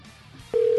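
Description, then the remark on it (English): After a moment of quiet background hiss, a steady electronic telephone tone switches on abruptly and holds loud and unbroken to the end. No one speaks. “So we'll get to some of that, and hopefully other things will work too, like the phone.”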